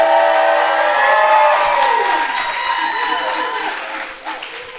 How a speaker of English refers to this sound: Crazy applause is very sexy. I love that.